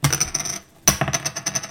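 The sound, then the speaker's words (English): Hard plastic clacking as a stack of poker chips is set down as a $5 bet in a poker game, then a second sharp clack after a brief gap, followed by rapid rattling and clicking of chips settling. “Everybody put their bets in. $5 bet going in.”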